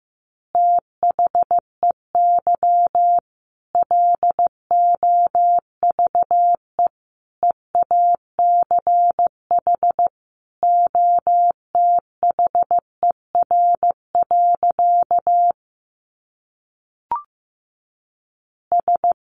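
Morse code at a steady 15 words per minute: a single mid-pitched tone keyed on and off in quick dots and dashes, with short pauses between groups and no voices.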